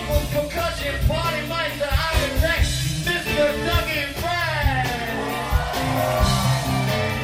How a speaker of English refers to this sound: Back up on the drums, y'all, …. He kind of gets a lukewarm cheer, but not as lukewarm as … got.